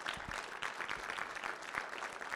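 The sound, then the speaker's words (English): An audience applauds the Lord with steady, dense clapping that holds at an even level for a couple of seconds, many hands blending into a continuous patter with no voices over it. “Let's give the Lord a clap offer today.”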